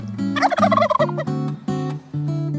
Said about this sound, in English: What is that? My turkey friend!